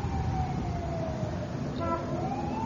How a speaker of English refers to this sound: Oh, there's always a siren. Always a tragedy somewhere.